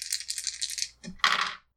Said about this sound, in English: All right, yeah, I'll throw it down on that then. Now I can roll three ones.